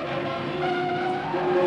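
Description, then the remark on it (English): Scooters skid with a loud, sustained tire screech over a rough engine roar, unbroken from start to finish, with no voices. “Look, the scooters! They're warning us.”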